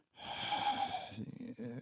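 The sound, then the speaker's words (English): A person breathes nervously: a long, heavy breath pushed right into the microphone, wheezy and slightly voiced, followed by a few shakier, rougher breaths. No words are spoken. “I'm just breathing literally the whole time into the camera, nervously.”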